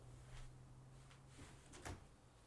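A door is opened to let a dog, Giz, back into the room after she knocked: a short series of quiet clicks and clunks, the sharpest near the end, over a faint steady electrical hum with no talking.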